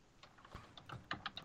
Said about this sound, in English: Sorry, typing.